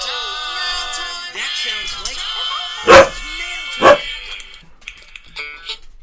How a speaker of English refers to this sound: Here we have a dog that's scaring himself with egg cartons right now. Yeah, he kicked over some stuff that was behind us, and then he got scared